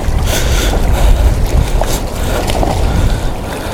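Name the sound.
sea water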